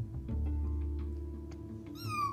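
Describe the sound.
A child's voice imitates a cat, pretending to be Captain Meow Meow, the police officer cat. It gives one drawn-out, rising meow near the end over a steady low hum, moderately loud.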